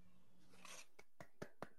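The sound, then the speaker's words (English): A few soft, slow hand claps, about five evenly spaced, quiet and unhurried like a polite golf clap, preceded by a brief breathy rustle. “Golf clap.”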